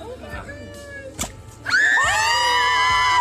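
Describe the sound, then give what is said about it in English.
A crowd breaks into loud cheering and high-pitched screams after a sharp bang as a Jell-O-filled watermelon tossed into the mouth of an alligator named Sally bursts and sprays blue goo, with scattered voices and the excited shouting swelling and holding steady. “after wrestling with an alligator named Sally, a watermelon filled with Jell-O was tossed into the alligator's mouth, one that burst quickly in her hauntingly primitive maw, spraying the blue goo to a chorus of cheers.”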